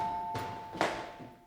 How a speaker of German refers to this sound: Scheint niemand da zu sein. Ach, klingel noch mal,